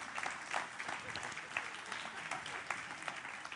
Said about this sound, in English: You guys give Eden a round of applause.